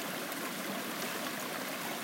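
small river flowing

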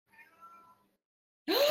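cat meowing

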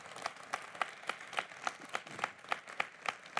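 audience hand clapping

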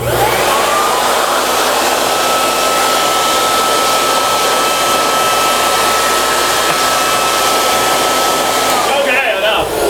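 leaf blower running

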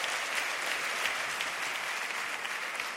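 audience round of applause

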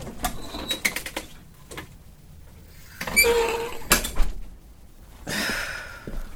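front door opening

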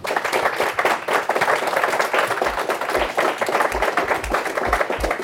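audience round of applause

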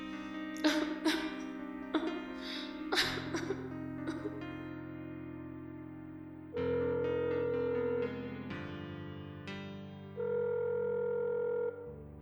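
telephone ringing

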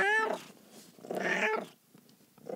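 cat meowing

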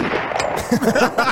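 gunshot sound effect

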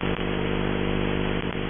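scratching

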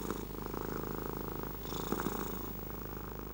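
cat purring

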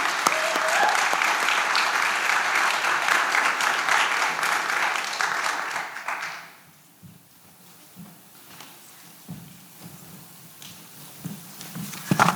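audience applause

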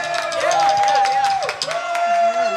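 audience cheering

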